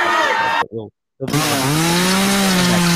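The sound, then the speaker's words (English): A loud, sluggish chainsaw drones with a low, wavering engine pitch, cuts out for a brief silent moment, then revs back up and keeps grinding steadily. “There was that a slow chainsaw, you fucking idiot.”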